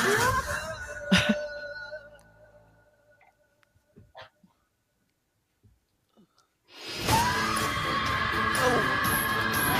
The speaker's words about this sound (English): Oh. That's some scream. Whoa, yeah. That was good.